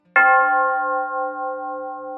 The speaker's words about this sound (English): Ring the bell and let's go.